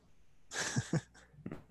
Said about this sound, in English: Hey. Oh, there's my angry dog.